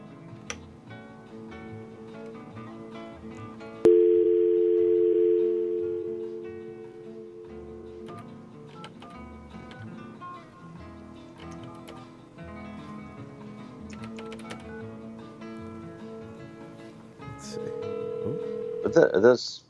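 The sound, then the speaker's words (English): A steady telephone dial tone comes in loud, hums for a few seconds and fades, then a quick burst of keypad dialing beeps near the end, over faint background murmur; a call being placed to Royal Liquors in Kansas City, Missouri. “It's ringing.”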